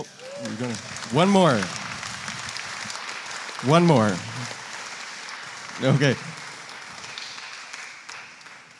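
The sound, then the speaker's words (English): Audience applause runs steadily through the whole clip as a dense, crackling patter, with a few short spoken words rising briefly above it. “Round of applause.”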